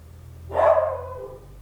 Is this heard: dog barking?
yes